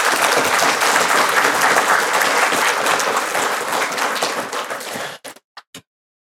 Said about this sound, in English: Do you want to just give an applause here and say, yay, God?